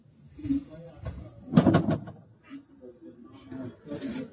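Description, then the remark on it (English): A woman's hands bang against a glass door in a few irregular bursts, the loudest cluster of thumps coming midway, with faint muffled voices in the background. “She's banging on the glass, wanting to touch her family, to be human.”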